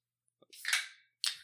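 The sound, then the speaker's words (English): A can of Pickle Tickle pickle beer from Barntown in Waukee cracks open: a couple of small metallic clicks, then a loud hissing fizz that fades over half a second, followed by a second sharp pop of escaping gas. No talking. “Well, before we crack these, we got to explain. We're doing a beer review today.”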